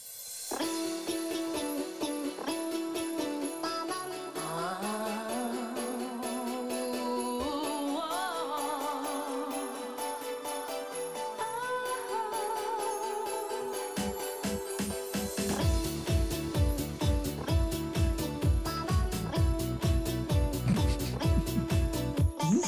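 A novelty Christmas song plays, with a squeaky, frog-like synthetic voice singing a gliding melody; partway through, a loud, steady thumping dance beat kicks in beneath it. No one talks over the music.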